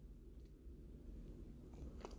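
Soft sipping and swallowing of tea, a few brief wet mouth sounds over a low background hum, with no talking.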